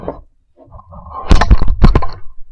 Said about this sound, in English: Sorry about that, gentle listener. The sudden sense of vertigo you just experienced was me knocking over the microphone in my eagerness to pour the Scotch.